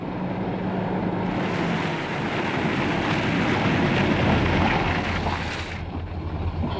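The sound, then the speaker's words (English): A car rolls to a stop at the roadside, a steady engine rumble with a hiss of tires on the road that swells in the middle and then fades. No one speaks. “Okay, pull the car over.”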